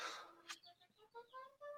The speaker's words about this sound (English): What kind of a bird is she? Just a budgie.